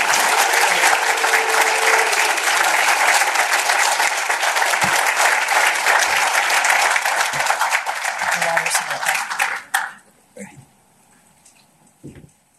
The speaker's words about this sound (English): We are about to welcome him to the stage. I'd like for everybody to give a round of rousing applause for Representative Buckner.